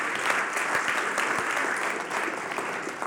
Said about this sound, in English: Can we all clap our hands together and say amen?